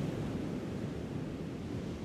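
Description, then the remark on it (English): A steady, continuous rush of wind and breaking surf on a beach, a broad roar with no distinct pauses, unbroken, with no voices. “The wind has calmed a bit and the rain seems to have gone.”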